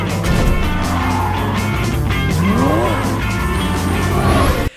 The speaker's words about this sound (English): Probably purely for the opening scene in it where it's like, where they escape the bank and it's that awesome car chase scene. It's so sick.